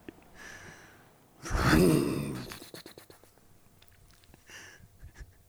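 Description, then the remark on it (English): A voice imitates a motorbike revving in one loud, breathy, rasping burst with a wavering low buzz lasting about a second, followed by soft scratchy clicks and faint breaths. “So I'll start by revving up my motorbike.”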